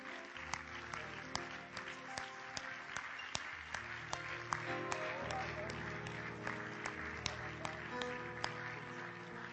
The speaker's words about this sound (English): Can we clap our hands unto the Lord?